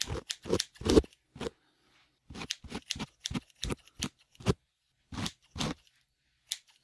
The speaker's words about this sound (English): Yeah, so that is like you put headphones on, 3D effect. It sounds like you're getting a haircut. Virtual haircut, that's what it's called.